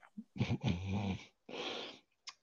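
A person lets out one long yawn: a voiced, groaning stretch that breaks into a breathy exhale, with a short sigh of air at the end.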